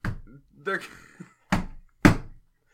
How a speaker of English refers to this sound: Well, I can hear the rebels banging on the walls.